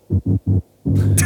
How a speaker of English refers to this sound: At around 3:28, where it's like, what's with the drumming? It sounds like somebody's like putting a pencil across the vinyl or the tape reel, like it's just where it keeps cutting out.